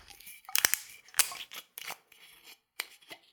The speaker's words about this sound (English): Okay, time to open the bottle. It's got a metal screw cap. Here we go.